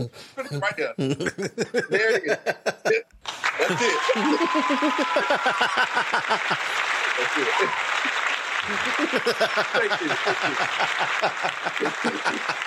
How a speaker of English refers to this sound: Oh my God, that's the longest applause sample.